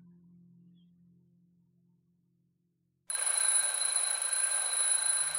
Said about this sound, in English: Two hours later, Clara's alarm goes off.